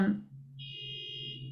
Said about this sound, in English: oh, there's a car alarm